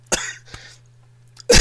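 cough into the microphone

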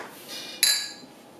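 beer glasses clinking

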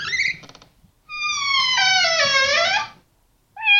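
cat meowing

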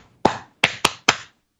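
hands clapping

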